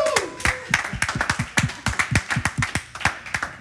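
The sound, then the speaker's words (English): A crowd at a church watch party claps steadily for a few seconds on a countdown cue, many hands producing dense, sharp slaps in a loose rhythm, with a brief tonal sound at the start and no speech. “2, big clap.”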